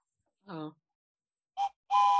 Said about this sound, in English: What the fuck was that? My whistle.